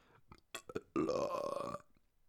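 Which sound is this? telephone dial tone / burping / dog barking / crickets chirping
burping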